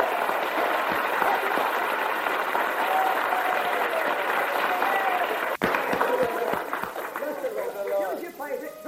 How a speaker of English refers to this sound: Everybody give Jesus a clap. Come on.